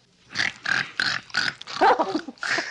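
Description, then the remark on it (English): A person makes a rapid series of loud, snorting, grunting pig noises, about six rhythmic bursts, imitating a pig eagerly eating from a trough, as in the piggy scene from A Christmas Story. “Now, show me how the piggies eat. This is your trough.”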